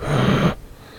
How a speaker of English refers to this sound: I feel like this mic picks up me breathing. I mean, yeah, if you breathe into it. Or maybe I'm just breathing out of my mouth. I'm a mouth breather.